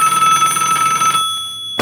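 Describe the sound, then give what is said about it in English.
A telephone bell rings in a rapid, trilling burst for just over a second, then stops abruptly, followed by a brief click near the end. No one speaks. “It didn't take time for her to get his phone number and call his office.”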